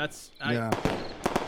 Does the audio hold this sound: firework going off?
yes